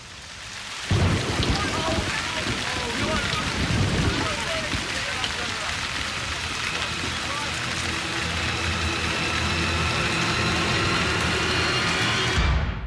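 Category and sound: nature, rain falling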